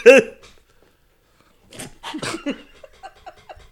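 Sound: cough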